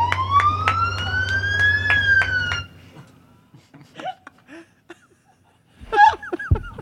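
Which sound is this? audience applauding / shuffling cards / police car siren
police car siren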